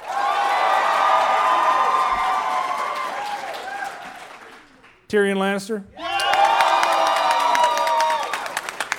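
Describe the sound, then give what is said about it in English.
A loud crowd bursts into sustained applause and cheering to vote on who is the tougher dwarf, breaks off briefly while a man asks a short question into a microphone, then erupts again into a second roar of clapping and whoops for Gimli. “By a round of applause, who's the tougher dwarf?”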